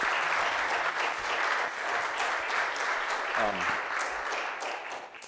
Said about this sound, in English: I know that we don't always clap as Presbyterians, but we should express our appreciation for it.